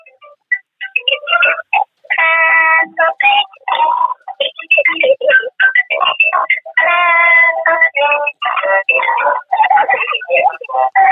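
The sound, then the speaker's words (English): A tinny musical birthday card plays, its small speaker buzzing out cartoon pig oinks and squeaky character voices over a bright tune, continuously for about eleven seconds. “Okay, now I've got my birthday card from my daughter. Do you want to hear it?”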